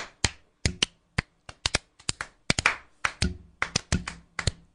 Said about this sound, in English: I'm just going to start clapping.